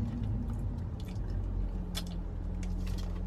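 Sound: sipping a drink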